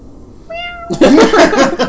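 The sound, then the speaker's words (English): A voice imitates a roar meant to intimidate guards: a short, thin, high cry gives way to a loud, rough, breathy roar that lasts about a second, heard on its own. “I say, guard the hallways, and then when they just stare at me, looking at, I give the biggest roar I can.”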